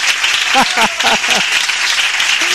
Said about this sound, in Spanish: Así que, por favor, un aplauso, por favor. Aplauso, ¿viste? Ahí está.